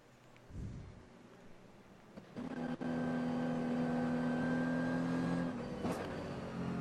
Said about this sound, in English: The engine in the background is the SP8T leader, Gabriele Piana, the Italian driver who has previously been a winner of the Dubai 24 Hours with Black Falcon and their Mercedes AMG GT4